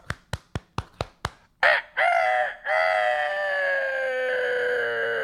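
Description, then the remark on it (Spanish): A rooster crows loudly and close by, a long drawn-out cock-a-doodle-doo, preceded by a quick series of six sharp clicks or taps. No one speaks. “Ahí está el gallo.”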